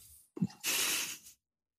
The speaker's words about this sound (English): Pouring a drink. Can you hear it? You are. What are you pouring? I'm just adding more of my guava LaCroix.